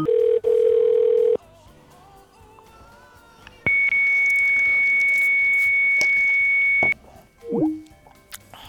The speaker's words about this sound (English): That bitch is a fax machine. She's fucking living it up.